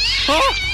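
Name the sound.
cats meowing and caterwauling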